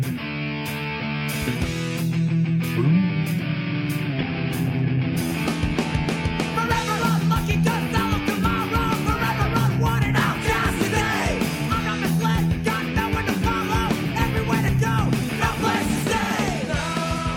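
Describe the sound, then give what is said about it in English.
A loud, dense, gothy punk rock song plays continuously, with driving guitars and drums under a shouted, screaming vocal that stays strained and raw throughout. “It sounds, actually, that screaming style, we're going to hear a little bit more of.”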